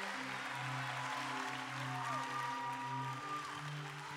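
An audience at a church gathering stands and applauds steadily throughout as a speaker comes up to share, a dense wash of clapping mixed with sustained low keyboard or organ chords playing underneath. No one speaks.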